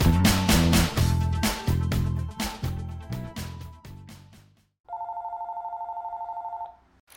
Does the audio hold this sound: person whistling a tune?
no